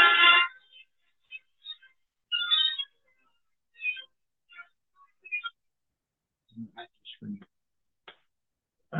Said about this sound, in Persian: تلفن ما بی تربیتی، نه وقتی که باید ساکت بشه زنگ زن.